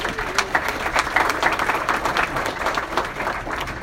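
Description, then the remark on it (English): An audience at a breakfast event claps for its business partner Neighborhood Loans, many hands blending into a dense, continuous patter of sharp bright slaps at an even moderate level with no voices. “Let's give them a clap.”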